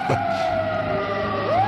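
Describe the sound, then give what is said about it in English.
A steady, droning engine hum runs underneath a sustained wailing siren tone that bends upward near the end, both loud, with no voices. “Would you like some sirens and a humming engine?”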